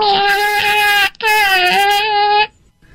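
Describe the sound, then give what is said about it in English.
A person imitates a cat's meow in two long, loud, whiny cries with a short break between, followed by quiet. “Okay, this is the most important meow for me, and it's the I need help wiping meow.”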